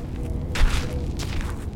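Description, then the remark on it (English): Two scuffing, rattling kicks at loose trash in the dry sandy bed of the Santa Cruz River in downtown Tucson, each a short crackly burst, over a steady low rumble of wind. “That's me kicking some trash.”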